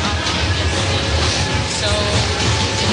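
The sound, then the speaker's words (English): A train bound for Polish cities rolls past at a regular train station with a steady, loud low rumble and a broad wash of mechanical noise, faint whining tones holding throughout the few seconds. “So this was perhaps just a regular train station.”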